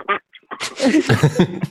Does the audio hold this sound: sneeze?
no